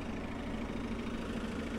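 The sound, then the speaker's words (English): A yellow-orange M city bus idles with a steady, low engine rumble without a break, a constant mid-to-low drone with a faint hum running through it and no voices on top. “There's a bus here, number yellow, orange M bus.”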